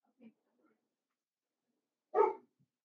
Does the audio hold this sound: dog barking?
yes